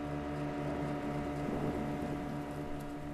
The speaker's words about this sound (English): He spurred the engine on just a little bit harder, and the boat seemed to bounce off each wave crest.